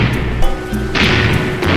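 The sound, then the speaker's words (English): A pirate galleon's cannon broadside fires at a Spanish fort in a loud, rumbling roar of deep booms and thuds, with a harsh burst of crackling noise surging in midway and carrying on to the end. “Give him another broadside.”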